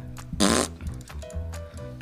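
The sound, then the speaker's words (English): A voice imitates a fart, blowing a loud, sputtering raspberry, followed by a few quieter buzzing flaps and murmurs. “Genius can appear in all shapes and sizes, and this time it's wearing an 80s hairdo and making fart sounds.”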